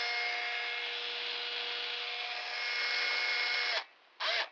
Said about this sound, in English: All right, I'm going to start drilling on this side.